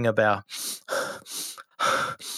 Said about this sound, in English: It's really important you breathe in through your nose and out your mouth, not the other way.